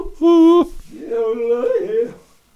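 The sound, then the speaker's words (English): A voice tries to yodel: one loud, held note, then a quick wavering run of pitch jumps and breaks, sung without any words. “Are you trying to yodel?”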